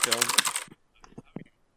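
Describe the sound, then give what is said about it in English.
A brief burst of voice gives way to a handful of scattered computer keyboard taps as someone shops online, irregular clicks spread over about a second, fairly quiet. “I just started doing online shopping, so yeah, you I'm might just, hear my yeah, keyboard”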